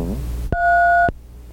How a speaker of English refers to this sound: We have to go beep now and then. Isn't that weird? Yeah, that's a regulation requirement for recording.